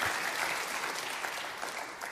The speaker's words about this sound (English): Now you can really clap for me. Make me real happy.